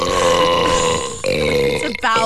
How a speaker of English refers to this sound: You will feel better once you, release a little bit of that's up in there. I was talking about belching